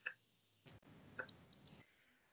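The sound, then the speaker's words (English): A handful of sharp mechanical clicks, like a stopwatch or clock ticking, spaced unevenly over a couple of seconds against a faint background hiss, with no one speaking. “Even just get a clock out. Get one of these just”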